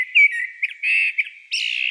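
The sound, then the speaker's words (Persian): A bird sings a bright, continuous warbling song of high chirps and whistled notes, clear, with short bursts running together and no voices. “چارلز داروین، پدر زیستشناسی تکاملی، در کتاب خود آورده که پرندگان نر برای جذب جفت خود و هشدار دادن در زمان حضور دشمن از آواز خواندن استفاده می کنند.”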